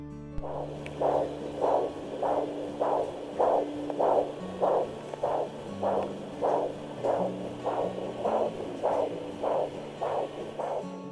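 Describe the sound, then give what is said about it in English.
A fetal heartbeat at 6 weeks and 4 days picked up on ultrasound: steady, rhythmic whooshing pulses repeating evenly over a low electronic hum, with no voices. “Here's the heartbeat. At 6 weeks and 4 days.”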